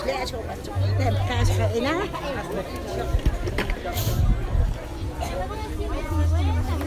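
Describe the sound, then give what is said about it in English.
Dense crowd chatter fills the busy Sunday market in Chichicastenango in the Guatemalan highlands, where the town is taken over by market stalls; many overlapping voices blend into a steady hubbub, with occasional sharp clatters and a low hum coming and going beneath. “Every week, crowds gather as the town is taken over by market stalls selling everything from tourist souvenirs and textiles to electricals and fresh food and, at the time we were there, musical Christmas lights.”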